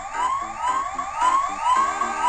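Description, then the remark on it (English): Video game emergency vehicle sirens as tiny toy emergency services vehicles drive out of a clicked cardboard box: the sirens wail in repeated rising sweeps, about four in a couple of seconds, over a lower stuttering electronic tone. The sound is steady and fairly loud, with no talking. “So what I'm doing is I'm clicking on this box and emergency services vehicles are driving out.”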